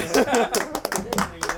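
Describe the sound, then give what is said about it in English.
A handful of sharp hand claps ring out at an uneven pace, mixed in with people talking and a bit of laughter throughout the short moment. “I'm not applauding that.”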